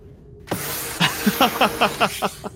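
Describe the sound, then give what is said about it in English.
An airlock door closing sound effect, played as a try-out: a sudden loud rush of hissing air, followed by a quick series of about seven rhythmic mechanical clunks as the door seals shut. No voices. “I tried out the airlock close sound effect. That was a loud one.”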